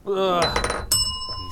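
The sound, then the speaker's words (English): A shot glass being moved clinks against a hard surface with a bright, ringing tone, two quick knocks with a lingering shimmer, alongside a brief burst of voice. “I need to move this shot glass.”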